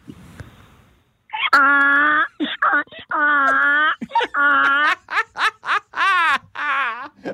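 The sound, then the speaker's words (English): A person imitates a donkey's bray: after a second of quiet, a run of loud, strained, alternating hee-haw cries, rising and falling in pitch, with short gaps between bursts. “Donkey. We got the donkey.”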